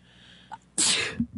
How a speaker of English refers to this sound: Oh, I have a sneeze coming on. Hang on. Sneeze.